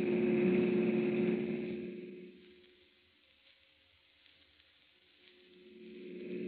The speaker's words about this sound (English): Oh, officer, can't you go faster? I'm driving as fast as I can